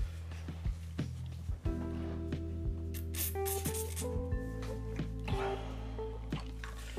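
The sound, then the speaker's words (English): Wet squishing and occasional drips as an ice cube is pressed and rubbed against a sore spot on the nose, with soft clicks over a steady low background hum. “I'm gonna set the ice cube right on the spot that hurts my nose.”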